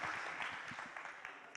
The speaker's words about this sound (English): Put your hand up if you've been here for over 40 years. Oh, guys, can we give a round of applause for these people? Right, you can take your seats.